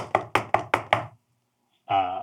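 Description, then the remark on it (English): A voice imitates a magic door lock: five quick, evenly spaced clicking knocks, a brief pause, then a short buzzing, voiced pop as the door springs open, moderately loud. “and then the door pops open”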